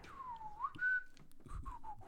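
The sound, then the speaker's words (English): A person whistles a short, wavering tune up close, the pitch sliding down, then rising to a steady held note before a few quicker, softer phrases, with no talking. “Yeah, it's like Snow White fucking whistling to the woodland creatures.”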